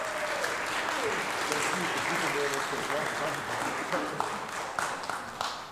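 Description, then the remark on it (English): An audience claps hands as a word of thanks, in steady, dense applause that holds at an even loudness for several seconds, with a murmur of voices mixed in beneath the clapping. “You can say thank you or clap your hands, either way.”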